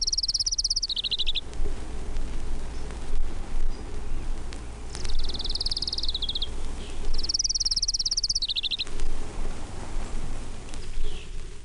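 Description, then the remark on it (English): A Townsend's warbler sings three high, buzzy, wheezy phrases spaced a few seconds apart, fairly clear over a steady low outdoor rumble. “Townsend's warbler.”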